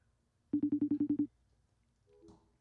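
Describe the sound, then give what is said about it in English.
A rapid run of about eight short, evenly spaced beeping tones as a phone number is dialed, clear, followed by a faint brief chirp. “Let's see if we can get this guy on the phone.”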